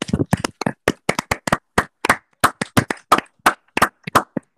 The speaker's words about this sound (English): let's clap it up for him.